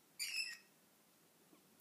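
Birds chirp faintly in the background: a quick cluster of high, twittering notes near the start, then quiet, and one brief sharp chirp right at the end. No one speaks.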